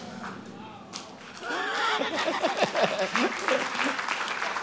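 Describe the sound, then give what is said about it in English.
An audience bursts into sustained applause, growing fuller after a quieter start, with scattered voices and cheers mixed into the dense clapping. “All those who are not clapping, they are suspects.”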